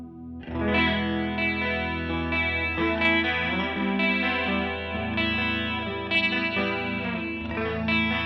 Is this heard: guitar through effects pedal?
yes